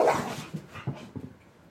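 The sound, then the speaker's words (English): A dog, Bailey, barks in a quick series of short, sharp yaps, the first one loudest, followed by three softer, slightly whiny barks. No one speaks. “Bailey, taking you to the dog pound.”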